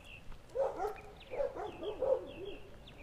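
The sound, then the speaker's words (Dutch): Dogs at houses bark repeatedly as another dog passes by, a run of sharp, irregular woofs over about three seconds, with faint birdsong chirping high in the background outdoors. “En bij sommige huizen zijn honden heel erg actief wanneer er een andere hond voorbij komt.”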